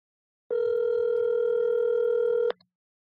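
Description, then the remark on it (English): A single steady telephone ringback tone from an outgoing call sounds for about two seconds, clear, then cuts off sharply, with no one talking over it. “This was weeks ago, so let's hope this nigga picks up the phone.”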